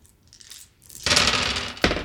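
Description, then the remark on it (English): A handful of eight dice clatters loudly onto a hard table after a quiet moment, rattling and tumbling for about a second, with a second sharp clack of dice near the end. “So many dice.”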